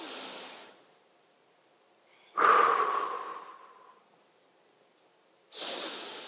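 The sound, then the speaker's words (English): Loud, airy breathing from a group of people taking deep breaths together: an exhale fading out, then a long deep breath that swells and slowly dies away, and another begins. The breaths are separated by near silence, with no talking. “Get some good breath in your lungs, some fresh air, maybe not so fresh in here.”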